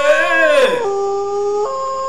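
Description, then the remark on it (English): A loud wolf howl that rises and dips, then holds a long steady note before stepping up in pitch, sounding alone with no one talking. “We got to bring them wolves out.”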